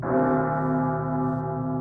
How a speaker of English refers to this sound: And consequently, when the bell struck one and no shape appeared...